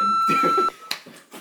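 A single steady censor bleep tone lasts about half a second, with muffled voices talking beneath it, then cuts off abruptly as the talking carries on alone.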